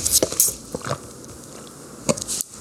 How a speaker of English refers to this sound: After your giant sip of water. Could you hear it? I don't know. Let's get another one.